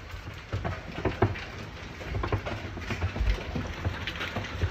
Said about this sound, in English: And I started hearing this familiar ping, ping, ping sound outside. My dude, it was some hail. And I took this video. Whoa. Just wait. Those look like golf balls.